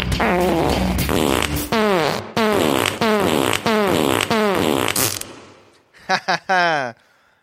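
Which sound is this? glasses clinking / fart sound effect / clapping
fart sound effect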